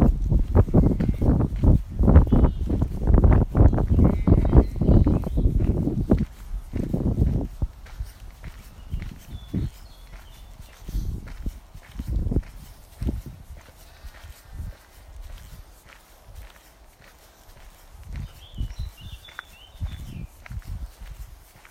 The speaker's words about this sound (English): Just walking past the fields here with so many sheep, so many lambs.